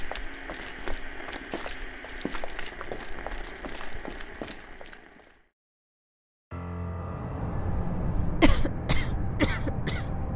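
Crackling, clattering background noise breaks off into a brief silence, then resumes as a low rumble while someone struggling to breathe from dust and smoke lets out four harsh, loud coughs in quick succession.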